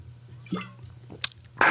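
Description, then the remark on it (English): Someone takes a quiet drink from a reusable water bottle: a sloshing sip and swallow, a small sharp click, then a brief breathy rush at the end. “Just for that, I'm going to take a drink out of my water bottle.”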